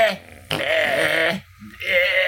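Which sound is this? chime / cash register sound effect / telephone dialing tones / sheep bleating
sheep bleating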